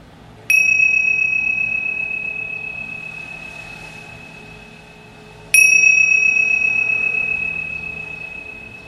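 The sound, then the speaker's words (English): A meditation bell is struck twice at the end of a meditation, about five seconds apart, each strike ringing out clearly and then sustaining a long, slowly fading tone over a quiet low background hum. “So whether the conditions allowed you to change, to hear the bell or not, just coming to the end of the meditation”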